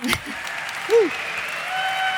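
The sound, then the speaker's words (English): An audience claps steadily, a dense wash of hand claps that holds at an even level throughout, with a brief vocal whoop rising above it near the start. “guys, clap it up, please.”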